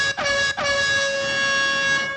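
A loud, brassy air horn sound effect blares: two quick short blasts followed by one long sustained blast that holds steady to the end.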